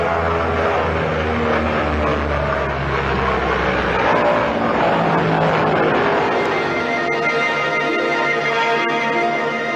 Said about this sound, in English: The giant 10-engined flying boat Princess makes a surprise visit.